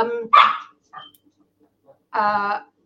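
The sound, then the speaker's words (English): A dog being looked after by a dog sitter barks in a few short, loud bursts, with a quieter yip in between and a final drawn-out bark after a brief pause, no talking over it. “Mango, he's not my dog. I'm dog sitting.”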